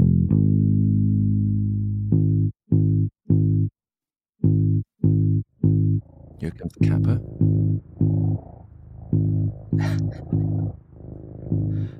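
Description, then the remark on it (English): A cat named Cusky purrs with a deep, steady low rumble of around 50 hertz while a sustained bass guitar note of about 50 hertz starts and stops in short, regular pulses over it. A person speaks briefly in the later half. “So I think we got a clip of that where you hear Cusky purring and you can hear this note on the bass guitar as well.”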